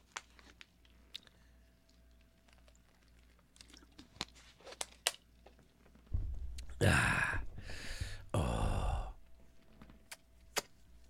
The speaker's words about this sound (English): All right. Sorry, guys. I had some water in my mustache, and I was sucking it off. That didn't sound good.